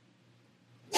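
A sudden, loud sneeze bursts out at the very end, after a stretch of near silence with only a faint low hum.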